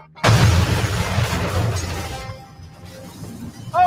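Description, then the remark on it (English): A sudden, loud explosion bursts out and then rolls off into a rumbling, crackling decay over a couple of seconds, and a voice begins just as it fades. “Oh, an explosion or something.”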